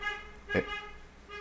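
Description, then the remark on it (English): A car horn sounds outside from a car driving past a house, in one long, steady honk of even pitch lasting the whole moment, fairly faint, with a brief noisy burst partway through. “All right, somebody driving past my house, apparently, yeah, they found their horn.”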